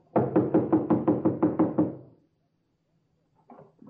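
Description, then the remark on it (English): A rapid series of about nine loud, evenly spaced knocks pounds on something solid, made by police, then stops; after a pause a short burst of voice-like sound follows. “Knocking and banging, banging and knocking. Stop making so much noise.”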